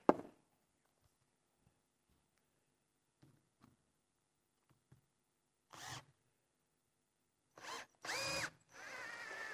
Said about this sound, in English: You want to stand on the stage and do that? Might be easier. You can put some weight on the drill then.